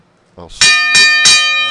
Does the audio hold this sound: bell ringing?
yes